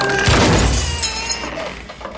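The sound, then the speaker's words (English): A door is broken and gives way with a heavy, booming crack as glass shatters loudly, followed by bright tinkling shards and rattling debris that fade over the next couple of seconds. “You broke her door.”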